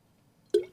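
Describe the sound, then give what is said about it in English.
A single wet gulp of water, a short hollow plop that fades quickly after a moment of near silence. No one talks. “Taking a gulp of water.”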